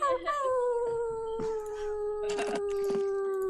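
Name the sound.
people imitating wolf howls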